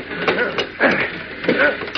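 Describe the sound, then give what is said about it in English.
A heavy steel sliding door on a locked refrigerator railcar rattles and clanks as it's yanked repeatedly, several jarring bursts of grinding noise in quick succession, fairly loud, as though it's stuck fast. “Hey, the door won't slide open. Oh, of course, it's locked.”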